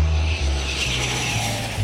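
An airplane roars by overhead, its engine a loud, steady droning rumble with a deep throbbing hum underneath. No voices, just the continuous engine noise for a couple of seconds.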